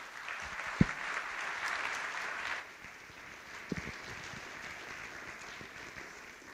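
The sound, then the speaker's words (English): An audience applauds as a speaker comes up, with steady, dense clapping that is strongest for the first couple of seconds, then eases to a softer patter, with a few sharp thumps mixed in. “Would you go ahead and give him a hand as he comes up?”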